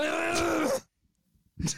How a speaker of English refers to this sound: I'm not muting. I'm just going to cough. Yeah, that's right. Sorry, I got to use my cough button again.